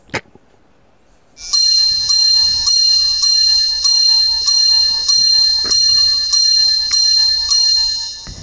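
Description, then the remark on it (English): After a short click and a moment of quiet, loud bright bells ring nonstop with repeated strikes in a steady rhythm, without any talking: the AMC movie theater's Divorce Bells, heralding the Myrtle Beach Bowl, Marshall versus UConn. “Folks, even heartbreak feels better here, and that is the AMC movie theater's Divorce Bells heralding the arrival of the Myrtle Beach Bowl, Marshall versus UConn.”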